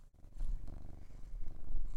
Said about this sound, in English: Cat purring.